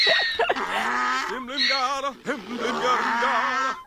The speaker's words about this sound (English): That's his donkey named Nathan. That's his donkey Nathan.